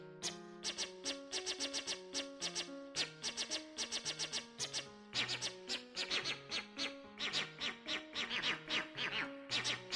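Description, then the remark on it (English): A heavily distorted melody of rapid, squawky notes that sounds like a flock of cartoon birds chirping and quacking a tune, loud and steady from start to finish, with no voices. “It does sound like a flock of cartoon birds. A flock of cartoon birds singing ….”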